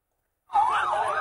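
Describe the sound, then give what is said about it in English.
An ambulance siren cuts in loudly after a brief silence, its wailing tone sliding up and down in a steady sweep with no voices, at the Jabalya refugee camp in Gaza as wounded children are rushed to ambulances. “Wounded children rushed to nearby ambulances.”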